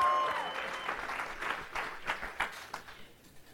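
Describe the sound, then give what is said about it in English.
A church audience claps together in praise as a speaker is introduced, a steady burst of applause that thins into a few scattered, separate claps before dying away. A faint sustained tone sounds briefly at the start. “You clap a hand of praise.”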